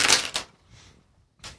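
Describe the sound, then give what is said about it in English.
Eight six-sided dice (8d6) are rolled: they rattle and clatter in a quick burst of sharp, bright clicks, then a faint tumble, a short pause and one more brief clatter. No one speaks. “And roll me 8d6? I got it.”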